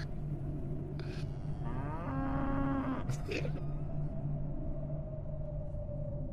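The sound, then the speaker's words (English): A big dog lets out a low, drawn-out rumbling groan lasting over a second, almost moo-like, with a steady hum underneath and no one talking. “That's the sound the dog makes.”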